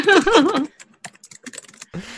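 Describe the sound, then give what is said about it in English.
A quick burst of computer keyboard typing, a run of light irregular clicks lasting about a second, bracketed by a short wavering vocal sound before it and a voice starting up after. “Yeah, that's the thing, because if you just randomly type, it never looks like actual typing.”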